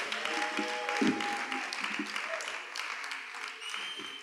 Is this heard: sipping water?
no